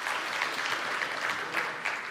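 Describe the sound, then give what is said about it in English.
An audience applauds steadily in answer to a question about having a junk drawer at home, a dense wash of many hands clapping at once, sustained and fairly loud throughout with no voices standing out. “How many of you clap if you have a junk drawer at home?”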